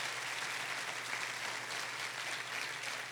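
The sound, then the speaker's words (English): A large audience at a bilingual Spanish-English church service claps steadily for Jesus, a dense, sustained wash of applause at moderate volume that never lets up, with a faint low hum underneath and no clear voices. “Go ahead and give Jesus a round of applause.”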